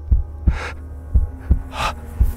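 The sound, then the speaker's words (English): A muffled, low heartbeat thumps quickly in close paired beats, with a soft breathy gasp rising between them over a faint steady hum. No one speaks. “It was a low, dull, quick sound, much such a sound as a watch makes when enveloped in cotton.”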